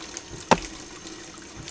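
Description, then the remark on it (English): Water runs steadily from a tap in a low, continuous rush while a raw chicken is washed, broken by two brief, sharper splashes or knocks, one midway and one at the very end. “I need you to wash the chicken first.”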